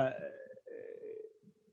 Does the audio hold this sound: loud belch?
yes